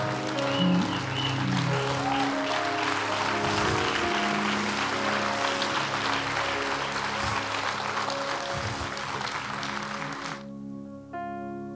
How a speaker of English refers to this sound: Come on up, baby. Come on, stand to your feet and give them a round of applause.